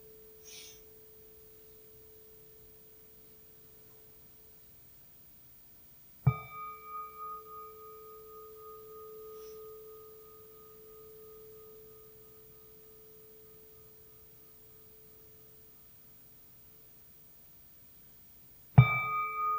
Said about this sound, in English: Listen to the bell.